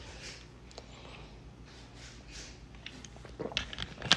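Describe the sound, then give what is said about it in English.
Someone quietly sips a Dr. Pepper soda while sitting in a dining room, a few soft slurping and wet clicking sounds gathering toward the end, with no talking. “Taking a sip of a Dr. Pepper.”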